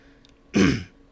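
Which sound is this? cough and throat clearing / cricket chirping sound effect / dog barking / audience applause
cough and throat clearing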